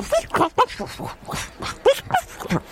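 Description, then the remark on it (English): A person imitates their neighbour's dog, Schizo, which has about four different barks, making a quick run of varied short barks and yaps, each one pitched differently, loud, with brief gaps between them. “Yeah, because he's got about four different barks.”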